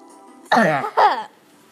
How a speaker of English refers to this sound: Sorry that I keep clearing my throat, guys. It's just really phlegmy today.